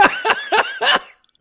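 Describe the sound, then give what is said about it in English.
A young boy's rough, harsh coughing fit: four loud, raspy bursts in quick succession over about a second, then silence. No talking. “we hear little brother … in the background coughing like he just got out of the goddamn coal mines in 1844”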